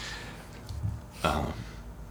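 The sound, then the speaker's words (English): A single sharp, harsh cough bursts out after a short, softer breathy sound, then trails off into a quiet hiss. No one speaks. “Coughs are good for the radio.”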